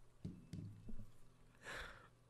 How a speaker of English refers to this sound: is just having a cough. It's a very old house, and apparently this guy doesn't have any housekeepers because the dust is just unbelievable.